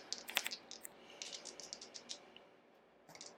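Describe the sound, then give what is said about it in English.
Two dice clatter and tumble across a hard surface, a quick burst of sharp little clicks that thins into scattered taps before one last rattle, landing on four and one. Quiet, with no talking. “I have two in my hand.”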